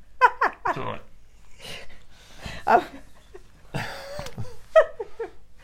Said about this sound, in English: Oh, you're being cleaned by the dog right up your Mrs. nose. Licky.